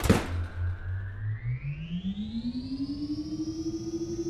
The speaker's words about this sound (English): So, to get started, this switch turns everything on.